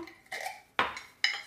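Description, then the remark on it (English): Small pots clink and clatter as they are set out and made ready on a hard surface, three distinct knocks spaced about half a second apart, fairly clear with no talking. “And get my little pots ready.”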